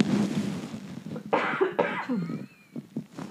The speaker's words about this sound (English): Y'all, I'm trying not to cough so bad, but there's the worst tickle in my throat.